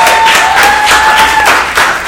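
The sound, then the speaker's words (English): A crowd bursts into loud, sustained applause when asked who has seen RuPaul's Drag Race, with a steady high whistle or cheer riding over the clapping for most of its two seconds. No one speaks. “By round of applause, who's seen RuPaul's Drag Race?”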